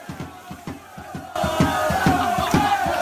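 A football crowd shouts in rhythmic bursts, many voices chanting together in a steady pulse that swells noticeably louder and fuller partway through.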